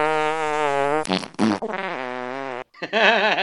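A run of loud fart noises, several long, buzzy blasts one after another, their pitch wobbling and sputtering, with a brief pause before a final quavering one. No one speaks.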